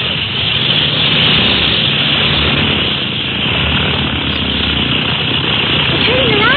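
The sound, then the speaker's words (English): A small seaplane's propeller engine roars loudly and steadily throughout, a dense droning whir that stays constant as the craft, brought up to the float, takes off into the wind, with a faint rising tone near the end. “But the small plane as that can be brought right up to the float instead of them having to roll out.”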